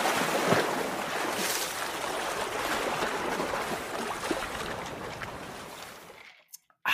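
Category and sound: sound effect, flowing water sound effect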